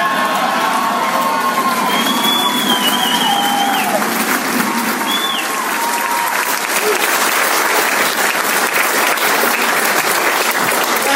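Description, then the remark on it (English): A standing ovation for a woman as she comes on to speak: dense, loud applause roars steadily for the whole stretch, with cheers, shouts and a few high whistles rising over the clapping in the first half. “I hear when you get a standing ovation before you even walk in the door, you should probably just leave.”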